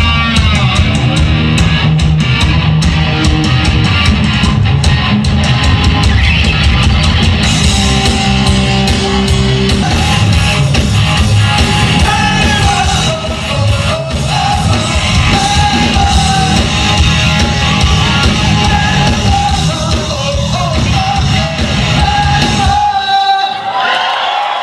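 A tribute band's rock singer, recreating a famous rock singer's scream, lets out high, strained screams over a loud, dense full-band performance with pounding drums and distorted guitars, sustained for the whole stretch before cutting off abruptly at the end.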